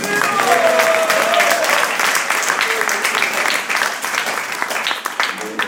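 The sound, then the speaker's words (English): An audience breaks into sustained applause for Prahlad, a dense crackle of many hands clapping at a steady loudness for several seconds, with a few faint voices mixed in early on. “He gets some applause.”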